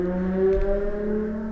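A car passes with a steady, low droning engine hum that swells briefly partway through, then holds on evenly. No one speaks.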